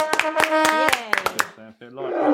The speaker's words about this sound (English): Do we have a round of applause?